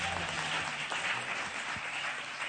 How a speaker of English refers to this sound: Today, let's take my apostle and his beautiful wife to the office. Clap for them as they exit.